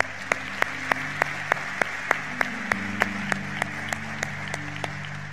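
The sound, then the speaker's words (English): A church audience claps for God together in a steady, even rhythm, sharp unison claps roughly three per second over a continuous wash of applause, with a low sustained hum underneath. “Yeah, give God a big hand clap.”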